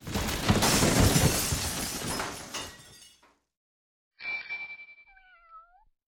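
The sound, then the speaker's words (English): In a bicycle workshop, a cat rubbing its body against a tool rack pushes it down onto a dog after knocking over a bike: a loud metallic crash and clatter of toppling tools and the rack rings out for about three seconds and fades, then after a short pause the cat gives a drawn-out, wavering meow. “Meanwhile, the cat has knocked over your bike, and while rubbing its body up against the tool rack, pushes it down on top of the dog.”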